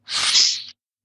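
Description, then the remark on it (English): A single sneeze, a sharp, breathy burst of hissing air that lasts well under a second, fairly loud, then silence. “Sneeze on me.”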